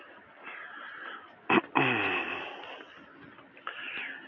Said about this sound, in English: How's that cough? Is that a COVID cough? What does the AI say? You should censor all your coughs now.